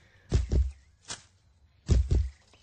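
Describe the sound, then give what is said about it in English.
Deep, booming thumps as a man strikes the deeper part of a tree trunk to build a bass rhythm, landing in a loose rhythm of paired hits with a lighter tap between, fairly loud with no talking. “He just starts hitting the Some. trunk, like the deeper part of it, getting Right. his rhythm going.”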